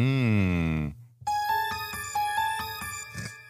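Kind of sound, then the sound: signal or alarm, phone ringing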